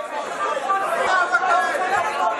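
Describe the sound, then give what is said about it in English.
A dense crowd of traders trading copper and tin, shouting over one another in the ring on a trading floor, a continuous loud wall of overlapping voices with no single speaker standing out. “The image of the ring is so iconic, isn't it? This a crowd of shouting traders.”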